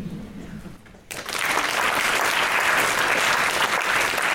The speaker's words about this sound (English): I'd like to thank the panelists again. You guys smashed it. A round of applause for them again.